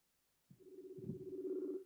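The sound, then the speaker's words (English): A Messenger call ringing tone, from a call being placed to someone on Messenger, starts abruptly after a brief silence, a steady electronic tone with a low pulsing undertone that holds at moderate loudness until the end. “For some reason, I don't have her number, but I'm ringing her on Messenger.”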